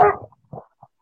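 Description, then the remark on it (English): A female puppy lets out one sharp bark followed by a couple of softer, shorter yips, with brief silence between them and no talking. “I'm sorry, puppy.”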